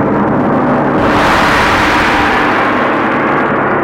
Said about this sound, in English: You hear all those overtones come up, right? Now, the coda here is that I've trained my koi fish to the sound of the gong.